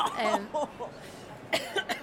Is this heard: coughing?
yes